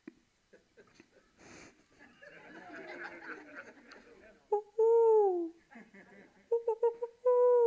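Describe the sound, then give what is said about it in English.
A person teaching an audience an owl call imitates an owl with loud, hollow hoots, one long note followed by a few quick short ones and another drawn-out hoot, after a stretch of breathy snickering and wheezy laughter. “So I can now talk to the owls when I hear them in the trees at night.”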